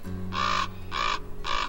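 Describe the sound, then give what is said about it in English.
A common raven croaks three times in steady succession, each call harsh, raspy and loud, with a faint low hum underneath and no voices. “a raven's black plumage works quite well in the desert”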